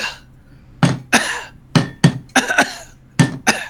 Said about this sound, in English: Like, in other words, if I drop my cup, right, and cough, right, they don't relate. Dropping a cup and coughing don't relate until I add rhythm to it.